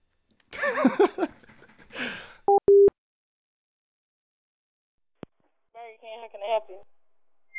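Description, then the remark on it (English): A fax machine tone on a phone line: short, steady electronic tones beep twice in quick succession, following muffled talk; a click and more voices come after a pause. “What's that noise? I think it's... Is that a fax?”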